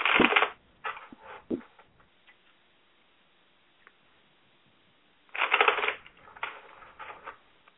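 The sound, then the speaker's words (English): Tarot cards being shuffled in several short, crisp riffling bursts separated by quiet pauses, with no one speaking. “And I'm currently shuffling the cards to see what's going on.”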